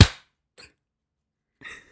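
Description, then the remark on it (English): One loud, sharp hand clap rings out and quickly dies away, followed by a couple of much fainter, slightly staggered claps, so the hands don't land together. Two people try to clap at once after a 3, 2, 1 countdown. “We'll just start counting down 3, 2, 1 and we'll both clap, okay?”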